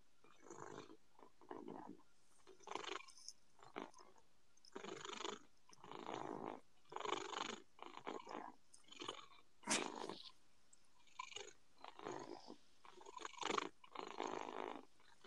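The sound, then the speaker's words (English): A cat lying on a person's chest purrs steadily, a raspy rhythmic rumble that swells and fades with each breath in a regular pulse, with no talking over it. “Sounds like a robot cat.”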